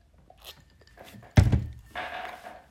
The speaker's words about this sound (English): Excuse me, I'm about to get a sip of water real quick.